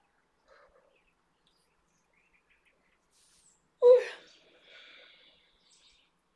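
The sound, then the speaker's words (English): Sparse bird calls outdoors: faint, scattered chirps in a quiet setting, then one louder, sharper call followed by a brief burst of high twittering that fades out. “I don't know, like I love the sound of my outside right now. All those birds and the bird calls, and yeah, they're all birds.”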